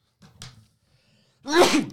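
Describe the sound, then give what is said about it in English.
A short sharp inhale followed by a loud, explosive sneeze from a person who is a little congested, with a brief quiet gap between the intake of breath and the burst. “What's wrong with bro today? Sneezing, burping.”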